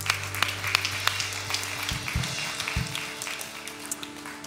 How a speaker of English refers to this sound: Can we clap for the hands that went up?